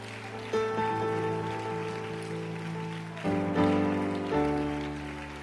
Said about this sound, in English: Lord, I want to clap my hands in praise. In the name of Jesus. Now clap your hands and begin to praise him.